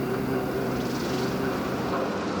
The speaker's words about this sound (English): Construction workers converting Wood Mill into Monarch on the Merrimack recently found these old recordings of mill workers and weaving machines. The machine would start up, you know, it would start, and it might have like a humming noise.